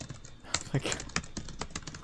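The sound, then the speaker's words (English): Rapid, irregular clicking of computer keyboard keys being typed, a dozen or so light taps over two seconds, moderately quiet with a faint background hiss. “Wait, I'm in the middle of typing something.”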